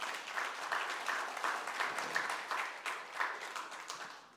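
An audience applauds steadily for several seconds, a dense wash of many hands clapping at moderate loudness with faint, irregular peaks and no voices above it.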